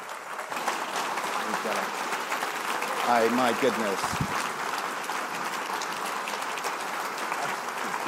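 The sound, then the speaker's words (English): A crowd at a Socrates in the City event applauds Dr. John Lennox steadily, a dense, even patter of clapping that holds at a constant loudness throughout, with a brief spoken exclamation from a man's voice heard over it. “How about a warm Socrates in the City round of applause for the truly great Dr. John Lennox.”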